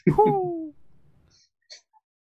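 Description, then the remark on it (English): A person vocally imitates the scream of a small flammulated owl: one short, loud, breathy shriek that slides downward in pitch and fades within a second, followed by a couple of faint clicks. “Scream. Sure, that's what owls made.”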